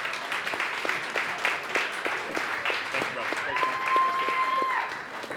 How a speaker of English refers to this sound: There you go, buddy. Well, give them a round of applause, please.